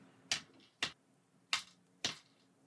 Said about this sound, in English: I am going to roll 5 dice. Any dice that come up 5 or 6s are bonus dice that I can roll if I am in danger of being eliminated.